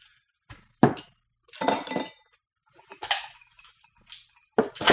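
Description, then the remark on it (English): Ice cubes clink and rattle into a drink glass to freshen a drink, in several bright, sharp bursts separated by short pauses. The clattering is fairly loud, with no voices. “Put ice right in there.”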